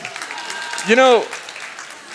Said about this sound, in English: of all the things you could clap at, I'm not sure that's the one.